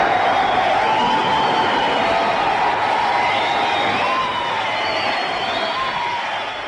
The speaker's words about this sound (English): Hear that applause, dear listener. It was not for …, not for Fred Lane. No. It was all for a commoner garden BBC announcer, Wallace Greenslade. How did he come by this rapturous applause?